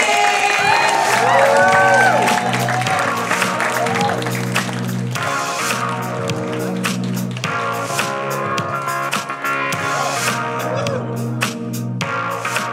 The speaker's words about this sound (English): So why don't you put your hands together right now. Mm-hmm. Start clapping. Clap louder. Uh-huh.